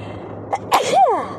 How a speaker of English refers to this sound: Y'all officially heard me sneeze. That was probably loud.